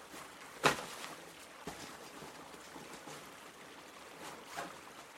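A small creek outside Lovell, beside a campsite, trickles and burbles steadily at low volume, with a sharp splash-like click near the start and a softer one toward the end; no one speaks.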